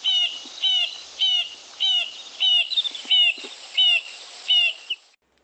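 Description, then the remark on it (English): An acacia pied barbet sings a steady series of about eight nasal, horn-like notes, evenly spaced at roughly two per second, rich and mid-pitched, with no talking over it. “I think I'll start with the sound of this acacia pied barbet.”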